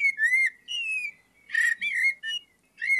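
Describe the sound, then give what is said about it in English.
A blackbird sings clear, fluting whistled phrases, five or so short melodic bursts with brief pauses between them, alone with no talking. “It is a blackbird.”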